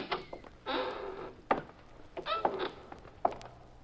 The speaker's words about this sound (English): Walk into that warehouse. Go on. The side door is open. Push it and go on in.